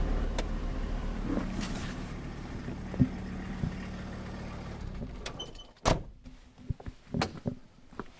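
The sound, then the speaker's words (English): A parked van's engine idles with a steady, low droning rumble for about five seconds on a Thursday night, then cuts out, leaving a few sharp clunks and clicks in the quieter stretch that follows as people get out of the van. “decided to get out of the van and have a walk around.”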